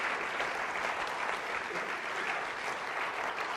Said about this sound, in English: Come on, give these guys a hand. Amen. Bless you guys.